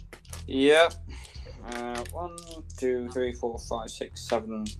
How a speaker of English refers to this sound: Should I just roll all of the damage? I'll do it for you. I have this big dice.